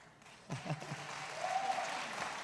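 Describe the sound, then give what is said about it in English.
A crowd applauds with dense, continuous clapping that swells slightly toward the end, and a brief voice-like call rises near the start. “Did you hear all those people clapping?”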